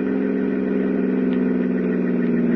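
A car engine drones steadily at low revs as the car is slowed, a continuous mid-pitched hum running the whole time with no voices present.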